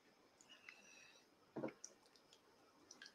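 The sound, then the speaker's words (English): A quick, wet slurp of water, one short sip, followed by a few faint mouth clicks, with no talking. “Let me have a slurp in my water.”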